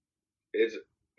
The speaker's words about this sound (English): I'm laughing and I'm coughing and shit, but this is me, y'all. I'm sorry. This is me keeping myself from having, like, a real nervous breakdown.